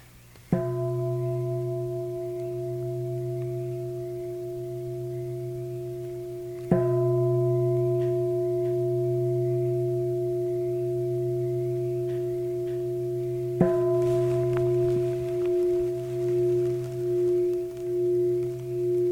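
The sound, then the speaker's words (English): A meditation bell is struck three times at spaced intervals, each deep, humming ring sustaining and blending into the next, with a slow wavering pulse as the tone lingers at the end. “So with the sound of the bell, you can let go of the words.”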